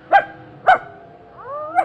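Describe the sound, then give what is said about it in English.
A small dog costumed with a prosthetic horn and plastic antenna gives three sharp, high yips spaced across a couple of seconds, with a brief whiny rising whimper before the last one, with no talking. “Or perhaps you can use this little alien dog to keep him awake.”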